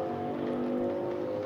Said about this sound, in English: I'm waiting for the bus to finish driving by. I think it's a motorcycle.